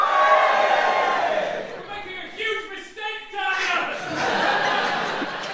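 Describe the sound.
A live audience cheers and whoops, mixed with scattered laughter and shouting voices, a loud, sustained crowd roar lasting several seconds with a brief dip in the middle before swelling again.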